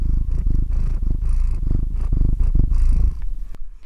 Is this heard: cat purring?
yes